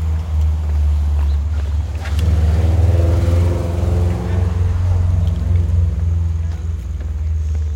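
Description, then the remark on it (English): A car engine rumbles steadily as the car speeds along a road, its drone swelling and rising in pitch partway through as it accelerates, then settling into a continuous deep hum. “Actually, when I think of people speeding up roads like this, I like think of your brother Tom.”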